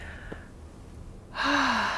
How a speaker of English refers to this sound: So let's relax our shoulders. We'll do a little connection exercise here at the beginning, and I just encourage you to relax your shoulders and let's take some nice deep breaths. Deep and slow breathing here.